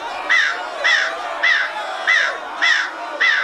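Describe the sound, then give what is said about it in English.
A bird caws repeatedly in a steady rhythm, six harsh calls spaced about half a second apart, loud with no talking. “I am well aware you don't have fingers. You're a bird.”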